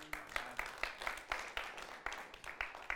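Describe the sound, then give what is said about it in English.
A crowd applauds a speaker at a talk steadily, many hands clapping in a dense, uneven patter that stays at a fairly even level throughout, with no voices standing out. “Thanks for the applause.”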